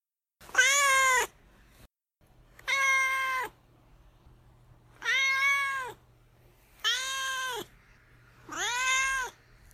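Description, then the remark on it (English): A domestic cat named Duarte meows five times in a steady series, each call drawn-out and loud, with short quiet gaps between them and a faint low hum underneath. “All right, now it's time for Duarte's Corner, where my cat Duarte will give his opinions on the book.”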